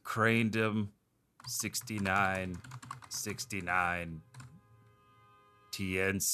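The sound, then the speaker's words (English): Rapid clicking of computer keyboard keys, fairly loud, as an email address is typed in, mixed with wordless sung or hummed voice sounds in several bursts, with a brief quiet gap near the start. “It's I'm typing it in.”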